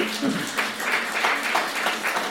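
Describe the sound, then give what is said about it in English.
A group breaks into steady, scattered applause, many hands clapping at once in a dense, even patter that holds at a moderate level throughout. “Oh, somebody, you may clap hands for that, sister.”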